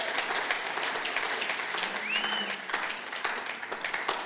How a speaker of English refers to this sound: You may take a seat. You guys may take a seat. We'll give them a round of applause as they take a seat. Thank you for that, guys.